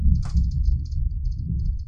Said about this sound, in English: I wonder if they can hear the windows rattling and that thunder. Mm. That was impressive.